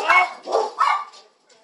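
Three sharp, loud dog barks come in quick succession from close by, followed by a faint, trailing whine as the barking stops.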